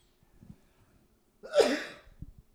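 One sharp, explosive cough bursts out loudly midway through, breathy and harsh, then trails off quickly. Faint low rustling sounds come before and after it.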